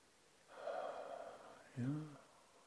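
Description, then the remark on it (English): A long, breathy exhale lasts about a second, followed by a brief voiced sigh. It is fairly clear, with no talking. “Breathing out.”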